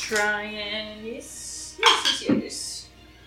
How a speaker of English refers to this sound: Alright, this one's gotta go in the dice jail. This one's not doing me well tonight. This natural 3.